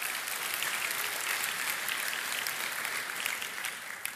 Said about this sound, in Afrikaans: Kan ons vir hulle 'n lekker hande klap gee?